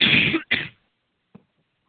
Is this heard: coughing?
yes